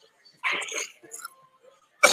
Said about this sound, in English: Like I say, folks, I'm not sick. This cough is from that stupid inhaler that I have to do every morning now.